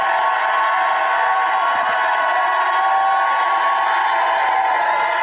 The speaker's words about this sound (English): Now, if you believe it, shout like you never shouted. Come on, give God a shout.